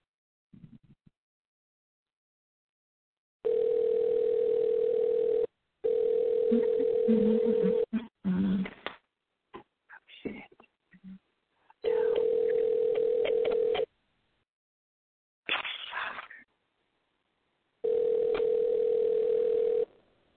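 A telephone line tone sounds in steady, two-second bursts, repeating four times with short gaps, and brief clicks and handling noise fall between them. Nobody speaks.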